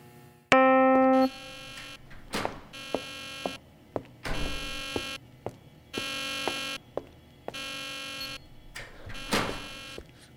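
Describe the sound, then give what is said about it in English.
A loud alarm blares in repeated harsh buzzing bursts, opening with a steady electronic tone, with sharp thuds and clatter between the pulses. No one speaks. “The alarm was raised about 10 minutes after I left the washroom, and now I'm on the move.”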